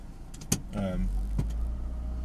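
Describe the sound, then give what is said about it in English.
Someone gets back into a car: a sharp door thud, a short whirring motor like a power window, another soft knock, then a steady low engine rumble carrying on underneath. “Right then, back in the car.”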